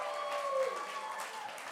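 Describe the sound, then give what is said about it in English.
An audience applauds as a guest slowly walks onto the stage, a steady, dense wash of clapping that holds at an even level throughout, with faint voices and a few brief tonal sounds mixed in. “Keep clapping.”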